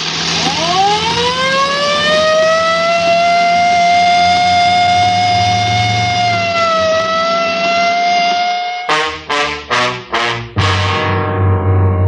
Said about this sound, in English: The rain's going to slow us down. I better use the light and siren